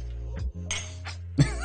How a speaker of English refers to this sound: You want to do cheers? Grab your cup. Grab your cup. Cheers.